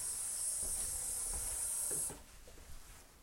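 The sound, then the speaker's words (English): A steady, bright hiss of running tap water fills the first two seconds, then cuts off abruptly, leaving a few soft clunks and quiet handling noises. “Excuse me, I'm going to go turn this water off so it might get a little loud with the water sound.”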